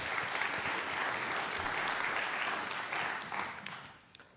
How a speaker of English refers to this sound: Come up here. Give them a little round of applause, please.